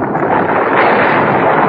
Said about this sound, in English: What was that? Sounds like a rock slide. Yes, some rocks in front of the entrance. Lots of them.